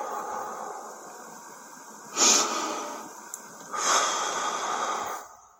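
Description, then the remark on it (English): Heavy, labored breathing of a man during a panic attack, a steady rasping flow broken by two louder, drawn-out breaths, with no talking. “Can you hear the breathing? He's going through it now.”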